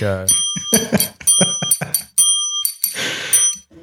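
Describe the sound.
An analog handheld bell rings several times in quick succession, its bright, sustained metallic tone hanging in the air while people talk over it.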